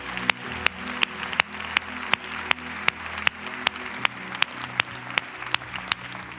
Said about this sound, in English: Could I see your hands? Could we put, I know we've been clapping. Let's put our hands together right now. Hallelujah.